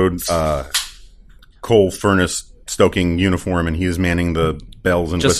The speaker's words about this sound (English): Just cracked a beer if you didn't hear it.